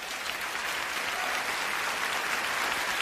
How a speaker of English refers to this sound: The other thing that's interesting to me is the applause at the Oscars after he says all this.